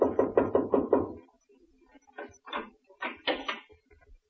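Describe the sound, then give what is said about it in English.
A doctor knocks on the door of a sick man's house: a quick series of five firm knocks, evenly spaced and fairly loud, followed after a pause by a few softer, scattered knocks and faint muffled thumps. “And so he went out to heal the heartbeats of the world, to look into hospitals across the country, and to knock on any door to enter the house of the sick.”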